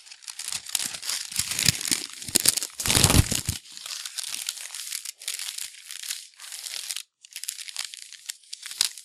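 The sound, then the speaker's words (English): Continuous crinkling and rustling of a crepe paper crown being handled, with busier crunchy bursts in the first few seconds, then steadier handling with a couple of brief pauses. “You got a cute crepe paper crown there.”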